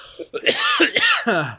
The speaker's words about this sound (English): I can't do it without coughing.